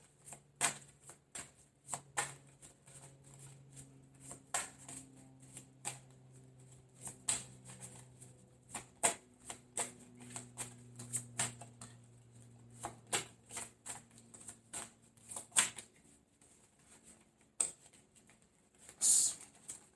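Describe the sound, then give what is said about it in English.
Tarot cards being shuffled over and over, a steady run of soft papery riffles and slaps, with faint low humming tones underneath and no talking. “When I picked up these cards to start shuffling them, it left one card down here.”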